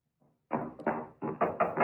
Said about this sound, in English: Little knock on the door, XXX. Yep, here she comes.